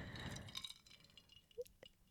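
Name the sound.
glass clinking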